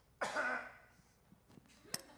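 A single throaty cough from a person getting over a cold bursts out loudly, followed by quieter breathy clicks and a short sharp snap of sound near the end.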